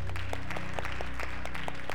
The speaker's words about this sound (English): But I also just want to thank God for this opportunity. So let's give God a hand clap.